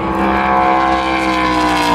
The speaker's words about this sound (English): And one of the Ferraris. And that's Tracy Crone's Ferrari going by very quietly, actually, that. Don't think he was going through at the sort of pace of the previous Ferrari.